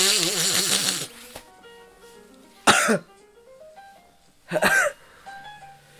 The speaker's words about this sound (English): Bless you. That was a real sneeze based off of your fake... Oh my god.